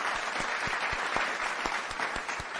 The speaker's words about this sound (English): Thank you. Thank you. This applause for you, guys.